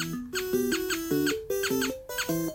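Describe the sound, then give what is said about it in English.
A cartoonish video-game mouse, which jumps out of a mouse hole after it is clicked, squeaks in a looping, bouncy pattern of high chirps over stepped electronic tones, repeating twice, loud, with no one talking. “Alright, I was waiting for the mouse to shut up, but I guess the mouse doesn't shut up.”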